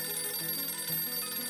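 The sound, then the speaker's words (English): A telephone rings at night with a steady, shrill, buzzing tone that holds unbroken for the whole moment, moderately loud, with no voices. “Later that night, Leanne answered the phone.”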